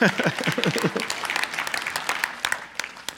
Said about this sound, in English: And okay, clap for that.